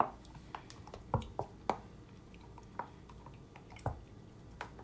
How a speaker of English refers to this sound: That's her chewing on the tennis ball.